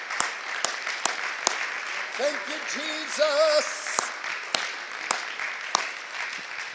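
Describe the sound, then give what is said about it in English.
A crowd of people clap their hands for the word of God in a steady burst of applause, broken by a few sharper individual claps, while a voice briefly calls out over the clapping. “Let's clap our hands for the word, shall we?”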